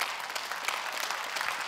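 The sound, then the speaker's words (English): An audience claps steadily, a dense, even patter of many hands with no voices rising above it, holding at a fairly loud level throughout, in response to news that 72 teenagers from the student ministry gave their life to Christ. “It's okay to clap.”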